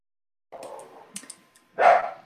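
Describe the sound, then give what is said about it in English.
A dog gives a short, muffled bark or two after some soft rustling and clicks, ending in one louder, sharper bark near the end; no one speaks. “I hope you can't hear any dog barking in the background.”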